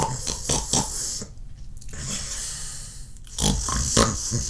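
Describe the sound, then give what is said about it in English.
Loud, rough snoring with gritty, pig-like snorts in short bursts, a cluster at the start, a quieter lull, then another burst of harsh snorts at the end. “They're like, you know, you snore like a friggin' monster.”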